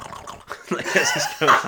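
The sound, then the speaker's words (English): A voice imitates a character tracking Hobbits by snuffling around like a pig: a run of rough, guttural grunts and snorts in quick, uneven bursts, fairly loud and growing stronger toward the end. “And he's just, like, snuffling around like a pig looking for trouble.”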